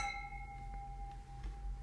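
household object, glasses clinking

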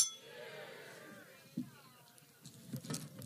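household object, cups clinking together

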